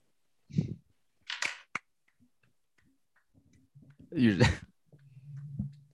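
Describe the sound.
A few sharp, crisp hand claps ring out in an uneven burst, applauding basketball player Gary Payton II of the Warriors, followed by a short stretch of low voice sounds and a humming tone.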